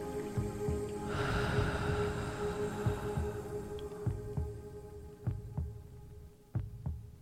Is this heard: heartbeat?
yes